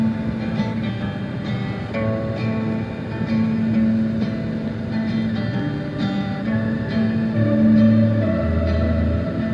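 A guitar plays steadily for the whole stretch, its sustained notes washed in heavy echo and effects, holding a loud, dense drone with low notes shifting near the end. No one speaks.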